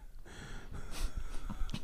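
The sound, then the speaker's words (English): A voice imitates a man breathing heavily: rough, noisy huffs and snorting breaths, moderately loud, with two stronger gusts toward the end and no speech. “Okay, I want you to do a man breathing heavily.”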